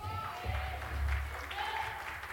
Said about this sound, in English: You're not going to give me that patty cake clap this morning. You're going to clap your hands and you're going to participate.